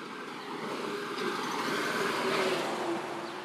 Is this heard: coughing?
no